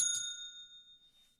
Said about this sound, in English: Yeah, so I guess if you haven't seen this and you don't want to be spoiled, because the story is fairly different from the theatrical release, the Joss Whedon version, I'm going to hit the bell for this as well.